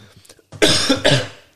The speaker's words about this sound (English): Excuse me, I just had a little cough.